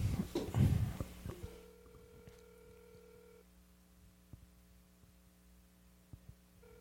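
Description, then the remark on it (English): After a brief rustle, the steady electronic ringing tone of an outgoing phone call sounds for about two seconds, then fades to a faint, low hum with occasional soft clicks. Quiet, with no voices. “So we're calling”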